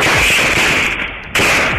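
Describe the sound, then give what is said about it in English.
A rapid string of sharp gunshots from a semi-automatic SKS rifle, fired by a man at a police officer outside a red and white brick home at the end of a cul-de-sac, pops off in quick succession over a harsh, hissy background, with no one speaking. “The man begins firing at her with a semi-automatic SKS rifle”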